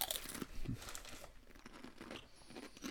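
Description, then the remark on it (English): A bag of Zapp's New Orleans kettle style voodoo potato chips crinkles and crackles in bursts of bright, papery rustling as the chips are eaten, mixed with a few crunchy bites, fairly loud throughout with no talking. “That way, they're not having to listen to us eat the whole time.”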